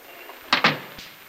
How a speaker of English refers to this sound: Hey, who's opening and closing the door out there?